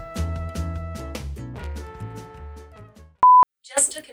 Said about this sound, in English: Huh? My phone decided it wanted to talk to me for some reason. Shut up, phone. Shut up.